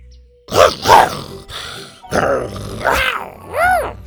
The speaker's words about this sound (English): with the tone of a fed-up mother, he growled and gave Scoot a push with his long red tail